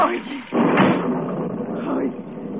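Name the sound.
car door slamming shut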